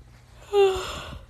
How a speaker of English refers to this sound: Oh my goodness, sorry. I'm already yawning because it's like a little after midnight and I'm supposed to be sleeping.